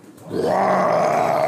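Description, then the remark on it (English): A voice imitates a character's roar of pain after a critical hit for 34 damage: one loud, sustained, strained bellow that swells quickly and holds for over a second with a rough, groaning tone. “He lets out a roar of pain.”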